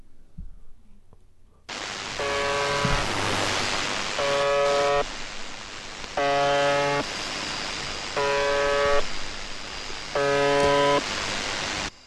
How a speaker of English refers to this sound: It sounds like some distortion and a buzz. Yeah. But somebody is broadcasting this somewhere in Russia.